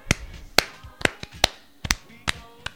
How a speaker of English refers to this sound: You get a golf clap for that. Fucking fantastic.